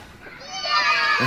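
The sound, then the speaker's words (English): A group of school children cheer together in a brief burst of high, shrill voices that swells and grows louder over about a second, as a builder digging a hole at construction work outside the school shovels some dirt. “and there's some construction work happening outside the school, and this builder is digging a hole, and every time he shovels some dirt, the children cheer, and he just carries.”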